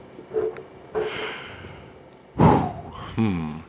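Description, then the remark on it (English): Heavy breathing: several loud, noisy breaths and sniffs at uneven intervals, the last ending in a brief voiced, groaning exhale. “Why are you breathing so heavily?”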